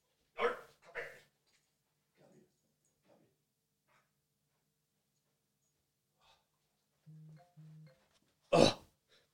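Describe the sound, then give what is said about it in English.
A female dog being lifted onto a person's lap: a couple of rustling bursts, quiet shuffling, two short whiny squeaks, then a loud brushing thump near the end. No talking. “Okay, she's secured on my lap. You wouldn't think she was a dog that was maybe feeling a little bit poorly the other day.”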